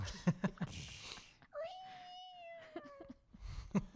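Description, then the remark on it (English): A single long, drawn-out cat meow rises and then slowly trails off, with muffled voices talking just before and after it. “Kitty, where are you going?”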